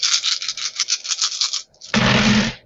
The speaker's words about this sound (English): So many dice. I know, so many. I love it. They're loud. It's very satisfying.